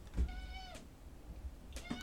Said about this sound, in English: Well, my cat Lucy is in here. Lucy, do you have anything to say?